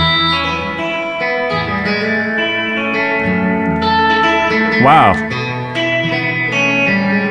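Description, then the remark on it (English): A guitar with effects plays a 1-6-2-5 chord progression in E (E, C sharp minor, F sharp minor, B seventh), ringing sustained chords that change roughly every two seconds, fairly loud, with a brief spoken exclamation partway through. “But I'm playing through the relative minors. I'm doing 1-6-2-5.”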